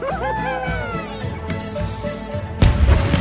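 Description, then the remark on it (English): Whistling colourful New Year fireworks streak upward into the night sky in overlapping sliding tones, then a loud crackling burst of explosions erupts near the end and keeps rumbling. “Suddenly, the night sky was lit up by the flashes of colourful exploding fireworks.”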